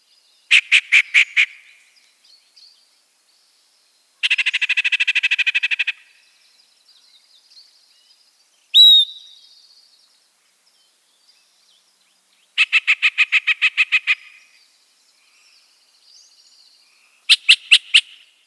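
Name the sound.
yellow-breasted chat song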